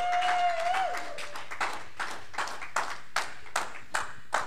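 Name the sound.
audience hand clapping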